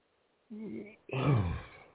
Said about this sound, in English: gotta yawn again.